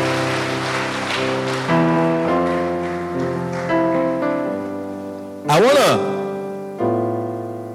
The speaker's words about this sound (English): Give Jesus a big hand clap and you may be seated.